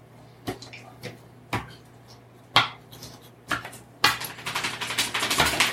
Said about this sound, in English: Just roll the dice, and then roll your initiative because we're entering combat.